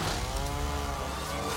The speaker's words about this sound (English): Oh yeah, chainsaw time. There it is, Resident Evil.